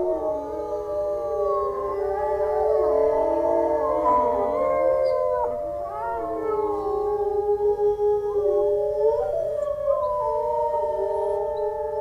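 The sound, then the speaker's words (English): A pack of wolves howls together in a sustained chorus, several long wavering voices rising and falling and overlapping continuously, fairly loud, with no one speaking. “They all participate, the whole orchestra.”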